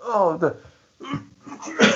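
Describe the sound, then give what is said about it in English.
A voiced, drawn-out intake sound followed by two sharp, noisy sneezes about a second apart, fairly loud. “Sorry, people, just sneezing away there.”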